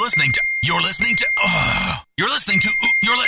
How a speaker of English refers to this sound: can you please silence your phone for one friggin' minute so I can get this done?